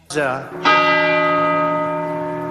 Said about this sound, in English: I've seen this already, and I thought they added the bells in. I thought that was something on Twitter that they added the bells in.